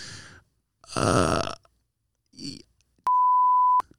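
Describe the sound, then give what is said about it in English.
A single loud, steady censor bleep of under a second cuts in near the end, following a few short throaty vocal noises, one resembling a burp. “We're gonna beep it.”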